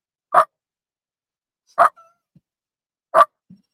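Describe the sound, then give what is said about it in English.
A person imitates a bulldog barking: three loud, gruff barks spaced evenly about a second and a half apart, each followed by a faint small grunt, with no talking. “Like, we're just like two little, like, ADD bulldogs who just like.”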